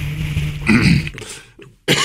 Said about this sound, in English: Let me clear my throat.